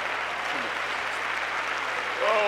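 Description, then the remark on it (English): An audience claps their hands steadily to the Lord, a dense wash of applause, with a voice rising briefly over it near the end. “Everybody clap your hands to the Lord today.”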